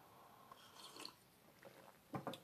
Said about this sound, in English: So my first sip of coffee this morning.